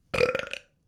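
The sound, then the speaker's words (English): A single loud burp lasting about half a second, with a rough, gurgling tone and no talking around it. “It was a bus burp.”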